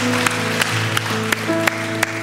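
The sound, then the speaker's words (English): At a Foundation Church service, a crowd claps loudly and continuously for people who raised their hands, over sustained, held musical tones, with sharp accents recurring at a steady beat throughout. “Can we give these three to four individuals that raise their hand a huge round of applause?”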